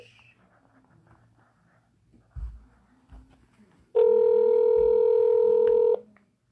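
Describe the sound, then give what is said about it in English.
A loud, steady electronic telephone tone sounds for about two seconds, with no one picking up, preceded by a couple of soft low thumps and quiet background noise. “I don't think he's answering.”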